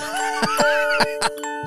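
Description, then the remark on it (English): A very old music box plays Jingle Bells: a thin, wavering tune that tinkles along in sustained notes, broken by several loud mechanical clicks or thumps, with no one talking. “It's Jingle Bells, right? It sounds like a very old music box.”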